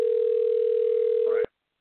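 A single steady telephone ringback tone, the outgoing call ringing on the line: one smooth, even electronic hum that holds for about a second and a half, then cuts off abruptly.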